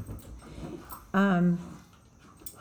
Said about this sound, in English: Rocco, oh my God, no one would keep him. He's really loud. He barks a ton all the time.